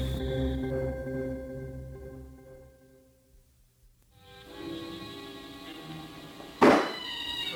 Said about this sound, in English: Someone banging on the back door.